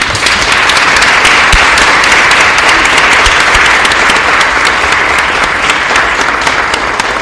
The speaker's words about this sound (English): And for a mother to dedicate her life, and I really mean seriously dedicate her life to her children, I'm going to ask you all to give another round of applause.